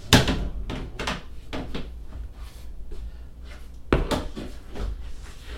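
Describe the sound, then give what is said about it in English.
A door is opened: a sharp knock-like thud, then several creaky wooden clunks and rattles, another solid bump near the end, over a low steady hum. “Let's see what's behind this door.”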